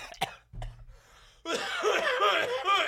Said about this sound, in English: Made me cough.